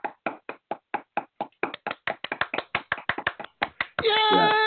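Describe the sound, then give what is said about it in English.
A quick run of crisp hand claps, a silly little celebratory clap, slightly irregular and picking up pace, followed by a short bright vocal cheer at the end. “I mean, it was, you know, we can go ahead and just and do that silly little clap.”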